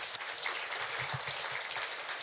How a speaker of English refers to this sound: Let's give him a round of applause for that.